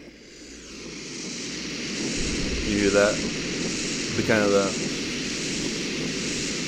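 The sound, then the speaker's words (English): A womb sounds recording for baby sleep, played from Spotify: a steady, low whooshing rumble that fills the whole clip without pause, while a person briefly speaks over it twice. “Here's the whoop sounds, womb sounds for a baby sleep.”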